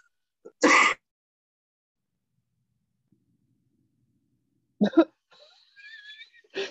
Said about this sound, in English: You sneezed and it froze it.